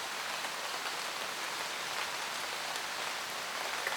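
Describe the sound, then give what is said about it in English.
Steady rain falls in a continuous, even hiss, with soft patters of drops on a surface throughout and no pauses or voices. “Listen to the sound of the rain.”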